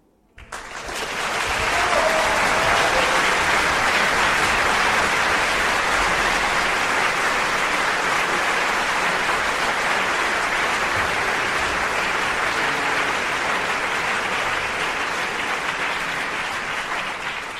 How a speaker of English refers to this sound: There was a thunderous applause